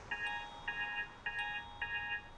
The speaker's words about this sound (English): But enough background. Cue the alarm clock. It's 6:30, the date is September 11th, the place Chicago, Illinois.